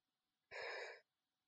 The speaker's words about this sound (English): Oh, so there she goes. It's her first yawn.